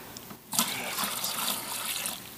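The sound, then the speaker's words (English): A short, steady rush of water pours into a container, starting abruptly after a brief pause and continuing as a bright, splashing stream with no talking. “Just a little bit of water. Okay. It's a little bit of water here.”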